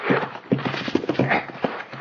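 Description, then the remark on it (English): Horses' hooves clip-clop in a steady, uneven rhythm, moderately loud, with no one talking. “The horses, boss.”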